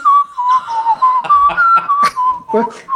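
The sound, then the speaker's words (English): Someone whistles an imitation of a rising lark's song, a steady mid-pitched tone that warbles and slides up and down for a few seconds, with breathy bursts and faint voice sounds mixed in. “I'm just hearing the lark rising.”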